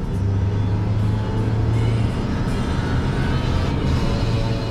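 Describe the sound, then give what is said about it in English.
Heavy trucks loaded with orange palm fruits rumble along a road in Indonesia, a loud, steady low engine drone with a sustained hum, traffic noise filling the whole stretch without pause and no voices. “To see what drives the Indonesian economy, just get out on the road. Even before sunrise, you see truck after truck loaded with orange palm fruits.”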